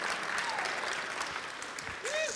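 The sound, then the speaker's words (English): Scattered audience applause for children as they are sent out of the room, a steady, moderate patter of clapping from a crowd that sounds fairly subdued, with a whistle-like tone rising briefly near the end. “That is not a big round of applause, y'all.”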